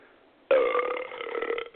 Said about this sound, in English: And it produces very good burps. This is pretty good. Genesee Ice.